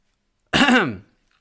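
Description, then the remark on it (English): A single short, throaty cough, fairly loud, lasting about half a second with a voiced, rasping edge before silence returns, made to attract a waiter's attention. No talking around it. “You say, excuse me, or maybe you cough.”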